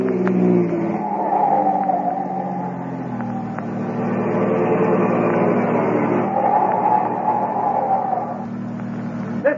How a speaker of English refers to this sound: close behind him speeds another car, a police car